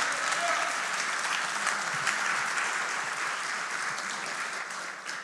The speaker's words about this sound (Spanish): Si usted lo cree, dale un aplauso fuerte, Señor.